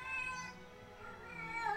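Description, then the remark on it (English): A female pet cat meows in a drawn-out, wavering cry that fills the whole moment, loud and clear with no talking over it. “Sorry, my cat wanted to read and... we're not gonna let her.”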